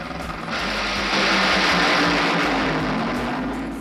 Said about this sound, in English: Was that Santino's Honda Civic just roaring out there? Did y'all hear it, by the way? Was I not the only one who heard the car?